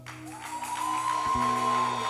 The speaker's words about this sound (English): Shall we give a clap offering to the Lord and also bless our sister?